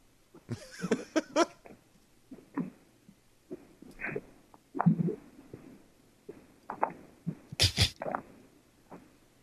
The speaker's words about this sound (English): So then the best part of the whole call is yeah. He has trouble hanging up his phone. I'm going to play it. This is in entirety how long it took him to hang up his phone.